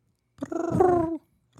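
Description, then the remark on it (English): A cat purrs in one rumbling, pulsing stretch of just under a second, then a brief second purr begins at the very end, with no talking. “Birds are chirping. Pussycats purring.”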